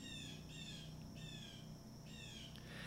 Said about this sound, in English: And that bird outside really has a lot to say. I'm going to say that that bird is in agreement with what I'm saying. That's why it's talking so much.